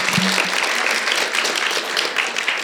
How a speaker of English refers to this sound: You're brave to come up here, man. Come on, give him a round of applause for coming up here.